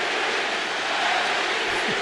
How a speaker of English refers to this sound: Hearing some MVP chants from the Warriors fans.